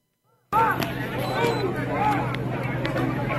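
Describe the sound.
A dense, loud crowd commotion starts abruptly after a brief silence as protesters block a bus bringing migrants to a new shelter on Midland Avenue next to Father Capodanno Boulevard in Midland Beach at night, many overlapping voices shouting and chattering at once, a steady roaring hubbub; audio from the Citizen app.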